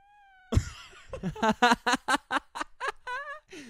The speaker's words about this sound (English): I got her. That's a cat right there.